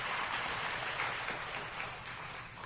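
An audience applauds steadily after a scripture reading, a dense, even wash of many hands clapping that holds at a constant level for a few seconds with no voices over it.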